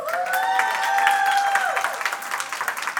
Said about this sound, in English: Clap long enough for her to get up here so we don't have that awkward moment. Yeah, just keep clapping till she gets to the stage. There we go. A little bit more cheer.